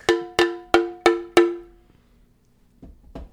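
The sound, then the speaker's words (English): A bell-like object is struck five times in a quick, even rhythm, each bright metallic clang ringing and fading, followed by a pause and a couple of softer knocks. “I have my closest bell-like object. Here we go. Ring the bells.”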